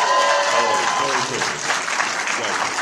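A panel audience claps and cheers steadily to show how many are Ghostbusters fans, a dense wash of applause that stays loud for the whole few seconds, with scattered whoops mixed in.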